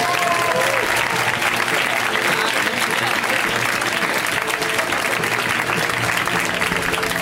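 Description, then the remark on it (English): A crowd applauds loudly and steadily, a dense wash of many hands clapping that holds at full strength for several seconds, with some faint voices mixed into the noise; a round of applause for the owner, who is up in the booth. “Well, you guys, then I think you should give him a giant round of applause.”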